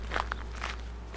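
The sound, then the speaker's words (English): A few soft footsteps of a woman walking back to a church office at an unhurried pace, each step a short muffled scuff, over a steady low hum with no voices. “Avoiding another look across the street, she walked back to the church office, picked up an envelope with her name on it, and returned.”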